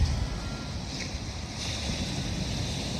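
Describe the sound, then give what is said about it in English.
Steady, full-band roar of ocean surf with wind buffeting the microphone, a continuous wash of water that never drops away, with no voices. “Yes, it is the sound of the crashing waves.”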